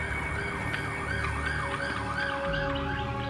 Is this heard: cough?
no